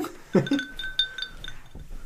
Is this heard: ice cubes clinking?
yes